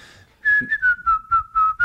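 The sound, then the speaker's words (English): Someone whistles in place of a round of applause, one sustained, fairly high note that sags slowly lower in pitch, with breathy puffs pulsing through it in a steady rhythm of about seven beats. No one speaks. “When you say round of applause, I'm just giving you more whistle.”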